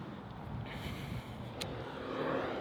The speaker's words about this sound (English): Busy, busy road. So let's see if I can wrap this episode up without too much traffic noise.